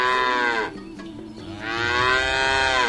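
A cow moos loudly, two long drawn-out lowing calls separated by a brief dip, with rich harmonic tone and no voices present.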